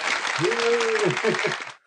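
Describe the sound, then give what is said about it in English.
A short burst of canned applause played from an applause button, dense and loud, with a voice briefly cheering over the clapping before it cuts off abruptly after under two seconds. “Where's the applause button?”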